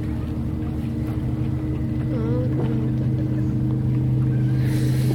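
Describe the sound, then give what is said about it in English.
A boat engine drones steadily on choppy water, a continuous low rumble with a strong hum, fairly loud, with faint voices briefly audible underneath. “All you can hear is the boat ponders.”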